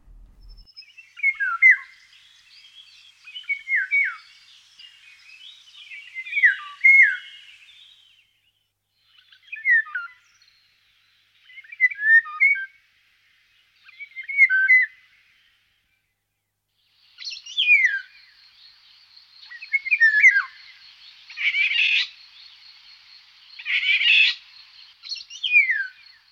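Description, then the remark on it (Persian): A Eurasian golden oriole (Persian: pari shahrokh), a yellow-and-black songbird of Iran, sings alone and clear in about a dozen short, bright, warbling phrases separated by brief pauses, with later phrases growing fuller and louder. “یا پری شاهرخ که یکی از خوش رنگ ترین پرنده های ایرانه، با ترکیب رنگ زرد و مشکی توی جنس نرش و همینطور سبز کمرنگ توی جنس مادش. یه مدتی هم صداشو به عنوان زنگ گوشیم گذاشته بودم.”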